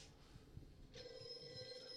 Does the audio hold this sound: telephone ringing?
yes